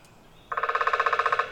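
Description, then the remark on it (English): A downy woodpecker drums in a rapid, even burst of about sixteen sharp taps lasting roughly a second, steady in pace and loudness before stopping abruptly. No voices are heard. “Yet another woodpecker with an even drum. Looks like a downy woodpecker to me.”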